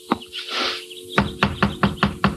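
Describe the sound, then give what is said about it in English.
Six firm, evenly spaced, loud knocks on the wooden front door of a frame house land in quick succession, after a lone thump and a brief airy rustle. “I knocked on the door, and after a while a hall light went on and someone was coming for the front door.”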